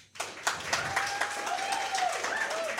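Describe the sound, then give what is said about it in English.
A crowd bursts into applause, many hands clapping in a dense, steady patter that starts abruptly and holds at a fairly loud level, with a few faint high whoops riding over it. The audience claps as a vote for Ash as the Nintendo character who would make the best hero of Gotham. “So if you clap if you think that Ash would make the best hero of Gotham...”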